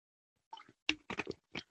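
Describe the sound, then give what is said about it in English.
Someone drinking water: four or five quick, wet gulping sips in an uneven rhythm, separated by short pauses, with no talking over them. “Let me drink some water on that one.”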